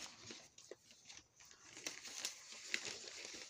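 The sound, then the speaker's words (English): Paper of a jail report crumpling and rattling, a steady crinkly rustle with scattered sharper crackles over a few seconds, fairly quiet and with no voices. “Sorry for all that paper rattling in, but I got the jail report right here because I ain't even done no damn.”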